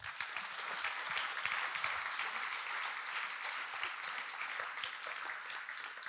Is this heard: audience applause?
yes